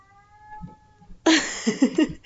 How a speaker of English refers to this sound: It's Sushi. He has this meow like he's mourning a lost loved one. Like, he's like those internet cats that like say like ow, and he's walking around the kitchen doing it